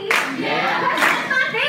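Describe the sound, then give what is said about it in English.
Half-hearted applause from a small group, a thin patter of uneven, scattered hand claps that never swells into a full ovation, lasting under two seconds. “Look at the people barely clapping.”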